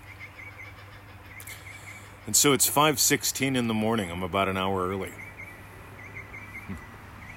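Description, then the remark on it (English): Faint, steady birdsong chirps in the background throughout, a quiet outdoor early-morning dawn chorus, while a man speaks briefly over it in the middle. “Listen to those birds.”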